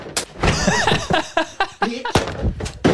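A door crashes off its hinges in a few loud, sharp bangs spaced across the moment, with excited voices and shouting filling the gaps between the impacts.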